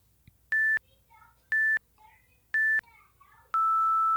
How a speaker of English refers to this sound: I'm gonna hit the play button and you're gonna hear beeps and that's what you get.